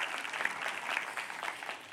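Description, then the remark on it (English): A crowd claps in a sustained round of applause to thank the properties and service teams, a dense, steady patter of many hands at moderate volume with no voices standing out. “There's work that goes on, and so just give them a big round of applause.”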